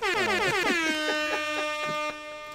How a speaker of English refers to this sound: Let's get an air horn